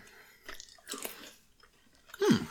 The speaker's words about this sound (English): All right, we'll chew these ones through. This whole podcast is just going to be people listening to us. People like me that hate the sound of chewing aren't going to be able to listen to